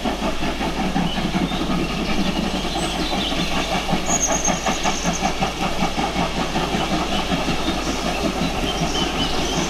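A train rumbles past on the rails, loud, with steady rhythmic clattering of wheels over track joints and a faint hiss, continuous for the whole stretch with no voices.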